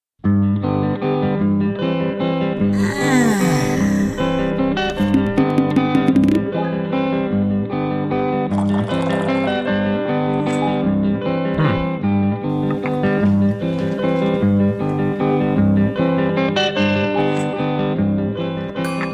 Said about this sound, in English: You're hearing one of the fanciful conceptual walkthrough videos produced for Google Glass.